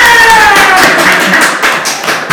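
An audience claps together in a dense, steady burst of applause, answering an auditory survey of who would win a fight, loud throughout and easing slightly toward the end, with many overlapping hand claps blending into a continuous crackle.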